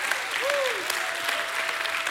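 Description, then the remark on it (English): A crowd claps steadily in a dense, continuous wash of applause, with a single voice rising and falling in a brief shout of praise early on. “Hey, give God a hand clap and a shout of praise.”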